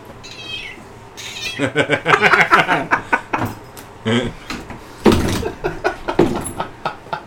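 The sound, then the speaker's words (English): A cat meows repeatedly, its calls varying in pitch and length and running together with little pause, loud and clear throughout; presented as the cat's review of the film Lost in London. “Cat review of the movie.”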